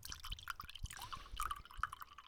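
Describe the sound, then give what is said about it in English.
Red wine, a Gallo Family Vineyards Merlot, glugs and splashes into a glass in uneven bursts, with bright gurgling blips and small drips over about two seconds, moderately loud and without any talking. “I'm pouring a glass of Merlot Gallo Family Vineyards.”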